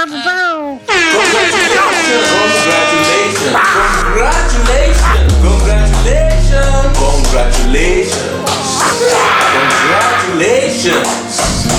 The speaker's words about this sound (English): Put in some wacha, like boards breaking, but also like some air horns, some celebratory air horns.